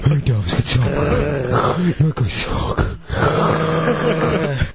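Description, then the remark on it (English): Heavy, labored sleep-apnea-style breathing of a man asleep on a porch, with deep voiced groans and grunts, rising and falling in a rough rhythm, fairly loud throughout. “and he'll be on the porch, and he's fallen asleep, and he sounds like he's, like, sleep apnea.”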